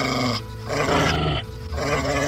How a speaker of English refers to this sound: As the flare's light brushes across the dead trees of the garden, a low growl swells into the cavernous space.